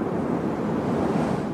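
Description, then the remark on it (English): Fierce wind roars across a mountain summit as a storm bears down and a team replaces an antenna, in a steady, loud, rushing blast with a low rumble underneath, holding constant without gusting pauses. No voices are heard. “Whipped by the wind, they replace the antenna.”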